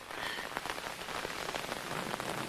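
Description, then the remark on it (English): Steady rain pours down on a group of people outdoors during a thunderstorm, soaking them, in a dense, hissing wash, with scattered sharper drops spattering on surfaces throughout. No voices are heard. “You guys are getting soaked.”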